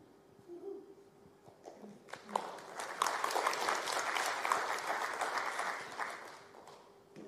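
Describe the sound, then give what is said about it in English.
Audience clapping as a speaker is invited up to share a faith testimony, starting with a few scattered claps, then swelling into dense, steady applause for several seconds before thinning out again. “Don't clap yet.”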